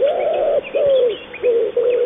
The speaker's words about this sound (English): A wood pigeon has this call. I got loads of them.